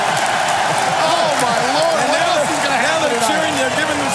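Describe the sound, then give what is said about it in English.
A packed arena crowd at a wrestling show the night after WrestleMania roars with steady cheering and clapping, many voices shouting and whooping over one another in a loud, unbroken wall of sound. “Round of applause.”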